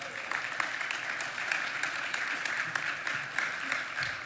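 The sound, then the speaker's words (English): A crowd claps steadily in thanks to the AV booth and welcome desk team, a dense wash of many hands with scattered sharper claps popping out, holding an even, moderate loudness throughout with no voices over it. “but our guys back in the AV booth, our guys out who are greeting and serving at the welcome desk, just let's give those guys a big round of applause.”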